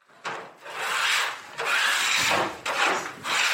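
Baking trays being scraped by a woman at night in long, gritty strokes, about four steady back-and-forth passes with a harsh, hissy rasp. Fairly loud, with no voices.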